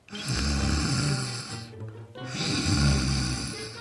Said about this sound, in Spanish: Pronto ambos hombres estaban roncando profundamente.